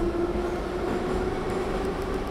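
A passenger train rumbles steadily as it sets off, with a low, continuous drone and a faint tonal hum, heard from inside the carriage. No voices, just the even mechanical roar of the moving train.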